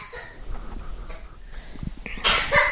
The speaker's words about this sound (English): Poor thing. She's coughing.